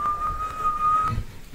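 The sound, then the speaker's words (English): A person whistles a clear, fairly steady high note for about a second, with a few brief breaks in the tone, then stops, leaving faint low background noise. “That nigga was the killer with the shotgun every time he come around whistling, goddamn.”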